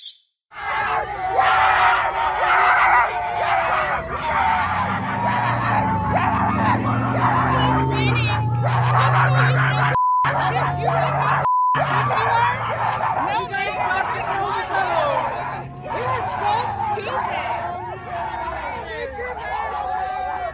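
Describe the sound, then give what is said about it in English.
At a pro-Trump rally, apparently in Miami, a crowd of people barks like dogs at two masked women, a dense chorus of short, sharp yelps and woofs over a constant roar of chatter and cheering, loud throughout with brief dropouts. “Yes, they were barking like dogs, just so you're not confused.”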